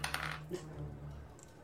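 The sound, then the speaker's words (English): Three dice clatter and tumble across a hard surface in a quick burst of clicks, fairly quiet, settling within about a second, rolled for damage in a tabletop game. “That sounded like a lot of dice.”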